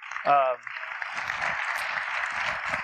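An audience breaks into steady, sustained applause, many hands clapping together in a dense wash of sound, preceded by a brief vocal cheer at the very start.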